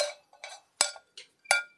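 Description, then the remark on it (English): A Mississippi State Bulldogs cowbell clanks about five times in an uneven rhythm, bright and metallic, with two sharper, louder strikes that ring briefly before fading. No one speaks. “Bulldogs, got a cowbell for those who can't see it on video. Can hear it.”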